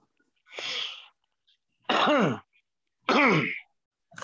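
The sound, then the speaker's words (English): Three loud bursts of coughing and throat clearing caused by smoke, spaced about a second apart: a breathy rasp first, then two harsher, voiced hacks. “Yeah, that's why I'm coughing over here. It's the smoke.”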